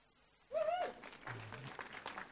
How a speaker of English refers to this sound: I think that is worth a yay and an amen. Clap offerings.